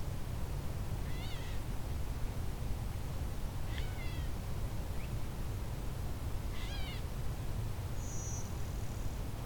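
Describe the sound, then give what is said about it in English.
A gray catbird gives three nasal, cat-like mewing calls a few seconds apart, in the evening, over a steady low outdoor rumble, with a thin high bird note near the end. “And some actual meowing from the catbird.”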